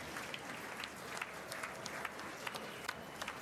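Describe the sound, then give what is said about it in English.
A crowd applauds at President Biden's State of the Union address, a dense wash of many hands clapping with a few sharper claps popping out, steady and fairly loud throughout with no clear voices. “Here we go, they're cheering, man.”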